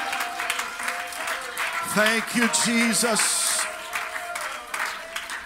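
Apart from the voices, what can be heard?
audience clapping hands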